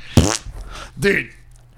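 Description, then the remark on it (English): Two short, buzzy fart noises sound loud, the first a sharp blast and the second a slightly longer, wetter rasp about a second later. “Does this cheer you up? Yes. I love farts.”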